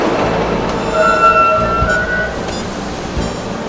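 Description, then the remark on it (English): A Brooklyn-bound 2 express subway train, next stop Fulton Street, rumbles loudly along the rails, a steady roar with thin metallic wheel squeals rising and fading over it. No one speaks. “This is a Brooklyn-bound 2 express train.”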